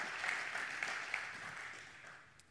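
A crowd applauds steadily in a dense, crackling wash of many hands clapping, holding fairly loud before slowly tapering off toward the end. No one speaks over it.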